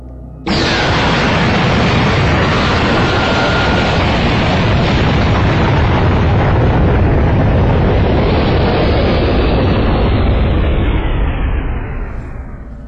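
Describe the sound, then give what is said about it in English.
A loud energy cannon blast erupts and roars continuously for about twelve seconds, a dense, rumbling explosive wash that holds steady before tapering off at the end, with no voices. “There went another energy cannon.”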